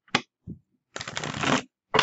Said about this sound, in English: So let us shuffle and see what kind of goodies are upon us this week.